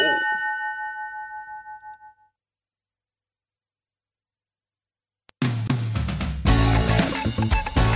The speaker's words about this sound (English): The phone's ringing.